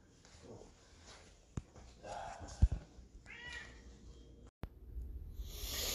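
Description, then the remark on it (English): A cat retches and heaves, with a few strained gagging pulses and wet vocal sounds, punctuated by sharp clicks and thumps before a sudden burst of noise at the end. “You get a little kitty puke action at the end.”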